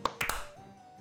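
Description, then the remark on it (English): A tiny smattering of applause, just three sharp, quick claps in the first third of a second, followed by a faint lingering ring and then quiet. “That's the amount of applause we're going to get.”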